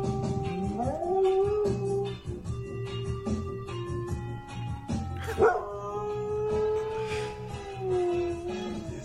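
A dog howls in long, wavering, pitch-sliding notes along with music playing in the background, the howls rising and falling in a drawn-out, song-like way. No one speaks.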